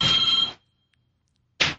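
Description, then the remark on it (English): A telephone rings twice: a loud, buzzy electronic burst, a brief silence, then the next ring starting. No voices, just the phone sounding. “Let me go kill this phone call.”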